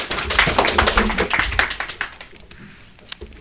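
A group of children clapping, a dense patter of irregular claps that gradually thins out toward the end, with no talking over it.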